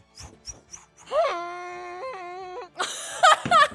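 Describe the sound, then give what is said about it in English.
A voice imitates a bagpipe: three quick soft taps, then a loud, steady nasal drone that steps up and down in pitch, ending in a few rough, squealing bursts. “That's exactly what bagpipe sounded like, too.”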